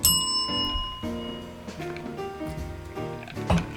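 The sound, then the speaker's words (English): A bright bell is rung, its first strike ringing out clearly and fading, followed by several lighter rings over soft background jazz music. “Hit the bell.”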